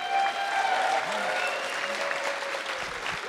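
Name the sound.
audience clapping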